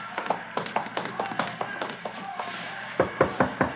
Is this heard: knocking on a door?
yes